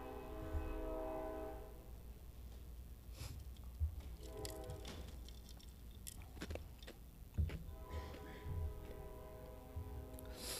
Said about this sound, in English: Verse 8. I'll wait on the train for a second.